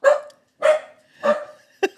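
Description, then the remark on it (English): A pet dog, Phoebe, barks loudly after being told 'Mommy's home' as someone arrives at the keypad. She gives three full barks spaced evenly apart, then two quick, clipped barks at the end, with no one talking. “She's going to bark.”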